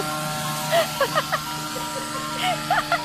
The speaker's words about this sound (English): The fucking taco truck?